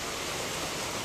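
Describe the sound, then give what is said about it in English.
A steady, even hiss of falling rain fills the moment, constant and unbroken with no distinct drops or pauses, fairly soft, with no voices. “And I would like to think that as it's raining, God is doing a mighty work somewhere.”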